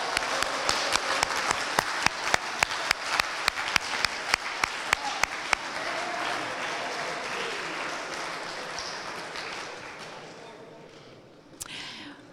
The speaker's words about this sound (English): Okay, if you feel comfortable, if you got all 5 correct and you feel comfortable, would you stand and let us applaud you for your core curriculum acumen? Anybody? Anybody? Come on.